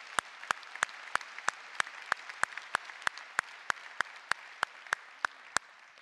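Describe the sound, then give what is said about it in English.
A church audience claps in steady unison to applaud the church's leadership, about seventeen sharp, evenly spaced claps roughly three per second over a soft room hum, with no voices. “Everybody all together so we see who you are and see the strength of leadership in our church, official leadership in our church, and we can applaud that, yes.”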